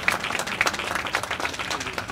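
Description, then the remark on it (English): A crowd applauds Rep. Anthony for introducing legislation, with many overlapping hand claps forming a steady, dense, even patter at a moderate level, with no voices standing out. “Yes, give her applause, everybody.”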